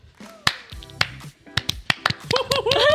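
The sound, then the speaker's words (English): Hands clap in a loose, uneven series of sharp, bright smacks over about three seconds, with soft tonal sounds in the background that swell into a fuller, wavering tone at the end. “Wait, why are we clapping?”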